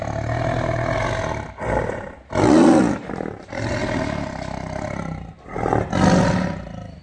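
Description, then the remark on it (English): A big cat roars repeatedly and loudly, deep rumbling bursts with growling breaths between them, building to strong peaks around a few seconds apart. “All the cows quit giving milk that summer. Why? Because they kept hearing this roar.”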